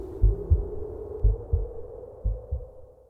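A heartbeat sound effect: three deep, muffled lub-dub double thumps at a steady, slow pace, with a low droning hum underneath and no voices.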